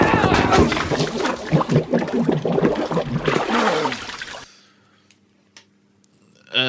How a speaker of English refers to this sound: When he's just... come into his flat and they smash him into the toilet with the milk and his head's under the water.